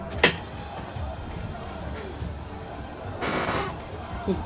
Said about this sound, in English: Sorry for squeaky chairs.